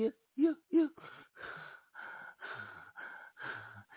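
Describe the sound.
Heavy, close-up breathing right on a microphone: a few sharp voiced gasps at first, then a steady run of loud, rough breaths in and out, each lasting about half a second.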